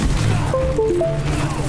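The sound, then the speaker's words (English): A heavy video game ground-slam impact from a shatter ability, a booming crash with a thick low rumble and brief ringing electronic tones over it, loud amid busy game noise. “You ready for this shatter?”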